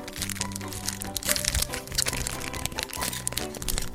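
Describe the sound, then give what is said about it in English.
Plastic wrapping crinkles and crackles as it is peeled off five-card packs of cards, a busy run of sharp, papery crunches lasting several seconds over steady, low background tones. “Peeling back some plastic. These five-card packs.”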